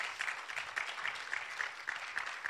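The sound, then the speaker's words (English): An audience claps steadily during a sermon, giving a clap offering to the Lord. The dense applause is at moderate volume, with a few sharper claps standing out rhythmically, and no one speaks over it. “Come on, give the Lord a great clap offering.”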